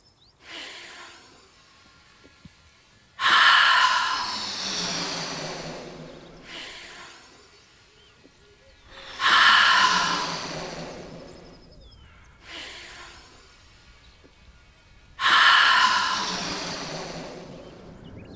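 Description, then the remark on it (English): Slow, deep breathing with no talking: three loud, airy breaths pushed out through the mouth at a steady pace, each fading gradually, with softer intakes of air through the nose between them. The breaths are part of a children's 'balloon breath' exercise, with the hands lowered during each exhale. “Now, open your mouth and let out your air while you lower your hands back down.”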